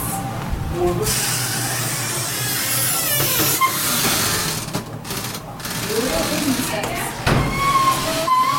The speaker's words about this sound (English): Whoa, that's a creaky old door. That is a really creaky door.